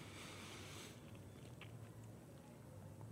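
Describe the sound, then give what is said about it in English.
Soft chewing of bread near a microphone, with faint crunchy and squishy mouth sounds repeating irregularly over a low, steady background hiss. “I hope the sound of me chewing is not making it on the microphone.”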